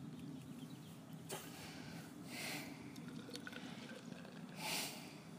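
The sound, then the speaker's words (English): The Garden Brewery Session IPA, a 4% beer from Croatia, poured into a glass: a sharp click, then two brief, bright, fizzy gushes of liquid separated by a pause, over a steady low hum. No one speaks. “Right, let's get this out into a glass and see what I think.”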